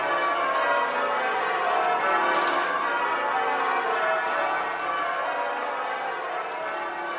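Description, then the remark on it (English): The church bells of Edgware and Stanmore ring out merry peals at night, a dense, continuous wash of overlapping chimes that stays loud and steady throughout, with no voices heard. “At night, the bells of Edgware and Stanmore churches rang out merry peals, and the crowds of people seemed reluctant to go home.”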